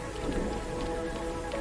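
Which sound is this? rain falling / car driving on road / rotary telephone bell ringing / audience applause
rain falling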